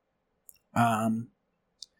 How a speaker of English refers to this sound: So I just end up clicking something, and most of it is just silly stuff.